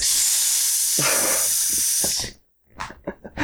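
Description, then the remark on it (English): A long, loud, drawn-out hiss from a human voice imitating a snake, lasting over two seconds before cutting off, followed by a few short breathy vocal bursts. “It sounds like we got a snake hosting this podcast because...”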